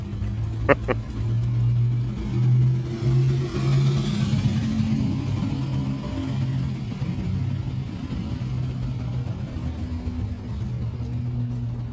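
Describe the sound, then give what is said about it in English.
A car engine rumbles loudly, its deep tone holding steady for several seconds, rising in a brief swell early on as the vehicle revs and moves past. “Oh, beautiful cars.”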